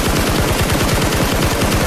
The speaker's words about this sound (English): Give me some gunshots